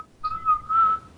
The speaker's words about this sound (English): Hey, my whistle made it stop.